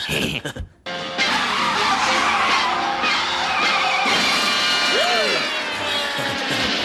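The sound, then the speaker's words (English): Car tires screech loudly in a long, sustained skid lasting several seconds, with a whining squeal rising and falling near the end over a dense, roaring background, from film footage of real car crashes shown in a driver's education class. “I'm required to tell you that the film we are about to see contains actual footage of gruesome car crashes.”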